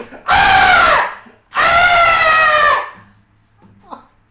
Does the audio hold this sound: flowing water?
no